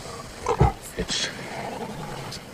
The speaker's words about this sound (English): Hey, you in the crate. Get your lion butt out of there. Looks awful tame. This lion's no good.